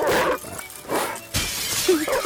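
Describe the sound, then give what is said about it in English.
Several bursts of breaking window glass crash in quick succession, loud, with a short yelp-like tone near the end and no talking: windows being broken in a newspaper-delivery computer game. “But earn points for breaking windows and damaging the property of non-subscribers.”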